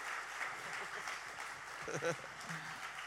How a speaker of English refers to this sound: Give it up for them. Keep the applause going till I get onto the stage. That would be great.